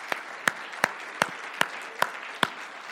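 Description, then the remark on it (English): An audience applauds steadily, a wash of clapping with a few sharp, evenly spaced claps standing out at a brisk, regular pace. No one speaks. “Could we just give an applause to everyone who worked so hard to make that possible?”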